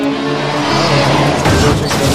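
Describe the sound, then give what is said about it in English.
A car engine hums with a steady tone before a sudden crunching crash on an icy road bursts out near the middle, followed by scraping, rattling debris. The collision is fairly loud, with no talking. “There's already wrecks.”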